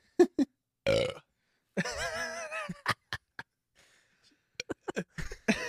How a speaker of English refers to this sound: The burps are the worst, man.